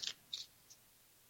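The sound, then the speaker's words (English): A deck of tarot cards being shuffled: three quick, crisp papery swishes, each softer than the one before, with no voices. “So I am going to shuffle. Here we go. We're shuffling.”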